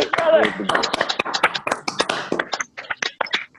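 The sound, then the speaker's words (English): Several people clap unevenly together over a video call, sharp overlapping claps through the whole stretch, with a voice cheering beneath the applause early on before the claps thin out toward the end. “So let's unmute our mics and let's clap”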